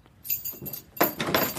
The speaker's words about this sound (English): She beckons me to the door on the other side of the stairs, opposite the sitting room. Jangling a large bunch of keys, she carefully selects one and unlocks it.